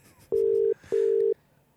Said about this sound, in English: the phone is ringing right now. Yeah. Does this person know you're going to call them? No. Okay.